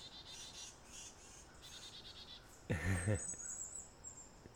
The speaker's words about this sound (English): Oh, we got some birds moving through. Black-capped chickadee.